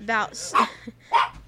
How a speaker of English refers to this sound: Shut up, Bree. Sorry, my dog lost his crap.